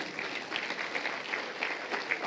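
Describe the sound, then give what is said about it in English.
A crowd applauds the musicians after their performance, many hands clapping in a dense, continuous patter that stays at an even moderate level throughout, with no voices standing out. “Come on, you want to clap? Clap for them.”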